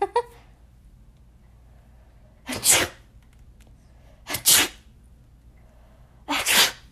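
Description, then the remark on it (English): Three sharp human sneezes burst out one after another, each a few seconds apart, with quiet hiss in between. “Here's my secret hidden talent, kind of. Maybe. Not really. My sneezing.”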